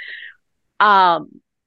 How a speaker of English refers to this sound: Cats walking by just doing her thing.